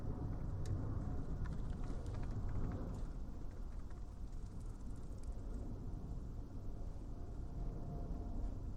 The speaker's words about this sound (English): So, I'm sorry about the planes.